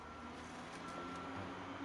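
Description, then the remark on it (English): A trash truck's reversing beeper sounds a steady high tone over a low diesel engine rumble, faint, with no one speaking. “Hey, a trash truck!”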